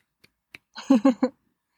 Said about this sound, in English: I like Becky as well. Claps, snaps for Becky. Snaps.